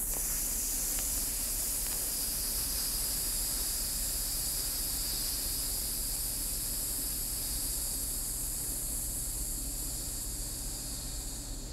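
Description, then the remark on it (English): A long, steady hiss sustained for the full length, a person exhaling through the teeth to imitate a snake after a deep breath in a breathing exercise, fairly loud with no other sounds. “And I want you to release on a snake-like sound.”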